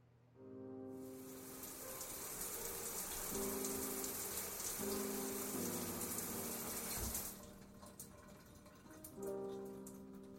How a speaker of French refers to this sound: Est-ce que ça te va si je prends ma douche? J'avais passé la journée dehors, puis j'en avais vraiment besoin.